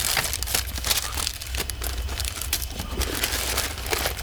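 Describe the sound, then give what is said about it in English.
Steady crinkling of paper wrapping around photographic negatives in an archive as it is handled, a dense run of small crackles and rustles lasting several seconds with no one speaking. “You've got all these paper-wrapped negatives.”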